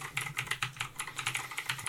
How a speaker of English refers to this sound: I'm typing letters, but it's not doing anything, so...